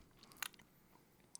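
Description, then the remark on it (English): A short, slurping sip of bourbon, quiet and brief, followed about a second later by a faint, tiny mouth click, with no talking. “Let me sip. I could be completely incorrect. Let me sip it again.”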